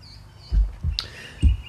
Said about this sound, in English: No, it's actually real birds. I have my windows wide open. Sometimes it's cool right now, but when it gets really hot, I close them. I have them wide open so you hear the birds. And there's trees right out here.